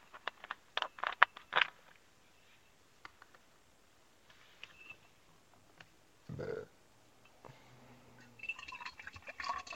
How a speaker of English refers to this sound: But first, I'm gonna get some water into my canteen. Into my canteen. It's a big gulp. Hydro flask. Hydro flask.